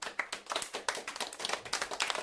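A small group claps politely for a couple of seconds, a soft, quick, irregular patter of hand claps that stays fairly quiet and steady with no cheering or voices.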